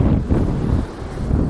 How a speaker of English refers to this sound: You might be able to hear this, but the sea is chucking up a good one. Is that how you say it? The waves jumping are up a good one. The waves are crashing over the fucking side. Oh shit! And going all over the path.